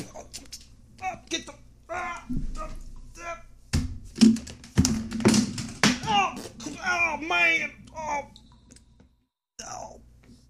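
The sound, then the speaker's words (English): Several sharp, loud knocks land on a door, a couple of them spaced a second apart, mixed in with scattered voices and busy room noise. “It looks like there's somebody at the door.”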